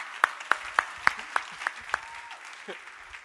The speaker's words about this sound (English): I said, the Holy Spirit. And they, okay, can clap for him. Let's clap for our pastor.